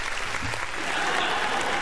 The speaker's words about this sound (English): Hold on. I'll get the applause in there with yours. And the laugh.